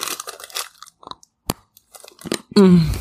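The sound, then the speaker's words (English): Crunching and chewing of a hard Ghirardelli 72% cacao dark chocolate bar, with a sharp snapping bite partway through, followed by a loud burst of voice at the end. “It's a hard crunch.”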